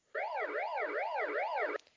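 A loud electronic siren rapidly sweeps up and down in pitch about four times, then cuts off abruptly after under two seconds, with no voices or other sounds.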